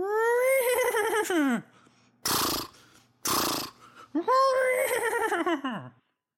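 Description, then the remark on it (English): A person imitates a horse whinny for the Boise State Broncos twice, each a loud, high, wavering neigh that slides downward, with two short breathy snorting bursts between them. “And in honor of playing Boise State Broncos, I thought we'd give them a horse whinny.”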